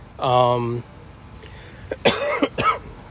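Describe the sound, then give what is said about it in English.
A brief voiced hum, then a quick cluster of two or three fairly loud coughs in rapid succession, rough and throaty. “I still got a little bit of a cough.”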